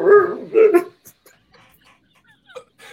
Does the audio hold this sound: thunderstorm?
no